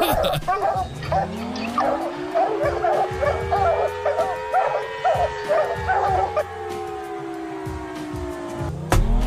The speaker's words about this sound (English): For now, you may listen to the dogs, baby.